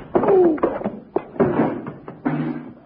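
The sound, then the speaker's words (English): A quick flurry of heavy punches lands in a fistfight, knocking a man out: three or four dull thudding blows in close succession, mixed with strained grunts from the fighters, fairly loud. “…, you knocked him out.”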